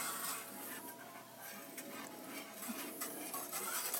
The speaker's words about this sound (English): Have to be careful that I don't stir too vigorously and splash it onto the burner, because the smell of scorched milk is nothing to enjoy, I don't think.